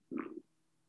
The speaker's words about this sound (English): Ooh, I got the hiccups. I drank that water too fast.